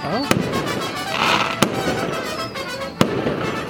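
fireworks display exploding

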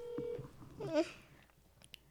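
video call ringing tone

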